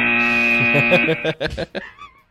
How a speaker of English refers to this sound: Get the buzzer ready.